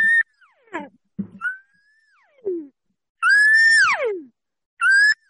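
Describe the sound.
A voice imitates the call of a lost calf or cow: several high, drawn-out bawling cries with strong harmonics, the longest sliding downward at the end, separated by short gaps and breaths.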